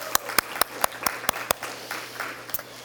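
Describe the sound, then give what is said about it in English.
Church audience applause for the Caring Hands Ministry team, a steady bed of scattered clapping with a handful of sharp, crisp claps standing out in a brisk rhythm, moderately loud, with no one speaking over it. “Another great round of applause for them too.”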